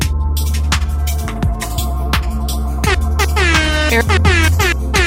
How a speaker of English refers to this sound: Air horn, air horn, air horn.